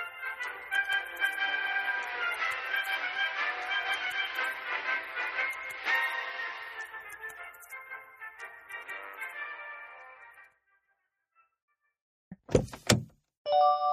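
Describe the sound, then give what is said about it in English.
A steady rushing, hissing sound fades out over about ten seconds, then after a brief silence come a few sharp thunks of car doors shutting as people get into a car, and a short mechanical tone. “Whoa, dude, your GPS knows, like, who's getting in the car and stuff?”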